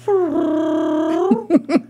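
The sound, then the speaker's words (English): A person imitates a cat's purr, the way they call their cat from the front porch, with a long, steady, humming voiced tone that dips slightly in pitch, then ends in three short rolling pulses, fairly loud and alone. “You purred like a cat.”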